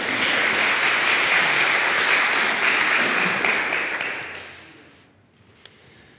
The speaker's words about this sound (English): Thank you guys very much. Thank you. Yes, you can applaud.